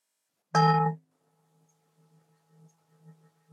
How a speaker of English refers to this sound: I'm sorry if the bell sounds a bit clunky. I put on original sound for Zoom, but it still doesn't do it very well. So, but you know what the bell sounds like.